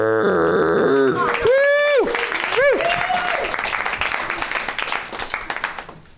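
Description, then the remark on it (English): Steady, polite applause from a show's audience as the games begin swells after a short tonal opening with a few swooping whoop-like sounds, then patters on evenly and gradually fades over several seconds. “We got a very polite crowd thus far.”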